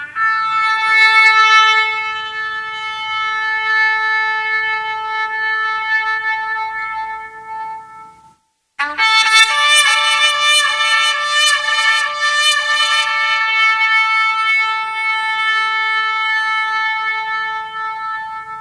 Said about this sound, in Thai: ผมใช้เป็นเสียงเป่าแตรนะฮะเป่าเขาสัตว์นะครับ